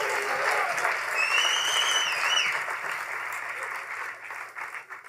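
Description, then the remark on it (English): A crowd claps their hands to the Lord in a dense, sustained burst of applause that fills the space, with a faint whistle rising above it before the clapping gradually thins out. “If you receive it one more time, clap your hands to the Lord.”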